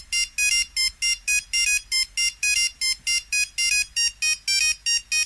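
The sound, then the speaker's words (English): A bright, electronic monophonic phone ringtone plays a quick, bouncy melody of short repeated beeping notes, steady and clear for several seconds with no voices. “I'm going to play you the very first monophonic ringtone.”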